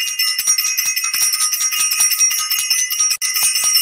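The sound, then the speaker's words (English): A bell rings loudly and continuously with a rapid, rattling clang, cutting out for a split second near the end before resuming. No one speaks. “Want to ring the bell for self-invested, send some love out to our self-invested family, some amazing work.”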